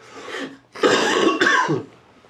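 Three harsh, fairly loud coughs, with a softer first hack followed by two stronger bursts, then a brief throaty trailing sound; no talking.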